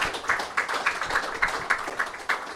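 An audience breaks into a round of applause as a guest is invited out for a conversation, a dense, steady wash of many hands clapping with small rhythmic surges, holding at an even level throughout with no voices.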